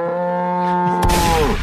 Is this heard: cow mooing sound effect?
yes